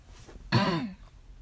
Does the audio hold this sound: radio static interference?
no